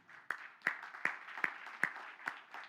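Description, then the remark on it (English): A crowd, standing, gives Jesus a hand clap of praise: six sharp, evenly spaced claps land on a steady beat over a continuous wash of scattered applause, fairly soft overall, with no talking. “Can we all stand to our feet and give Jesus a hand clap of praise today?”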